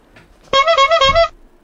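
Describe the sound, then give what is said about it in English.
A single loud clown horn honk, a bright, buzzy blast lasting under a second with a slight wobble, sounding alone against near silence. “Next time something dumb happens in this sport, instead of recapping it all in detail, I'm just gonna ask Fenyo to add a clown honk noise.”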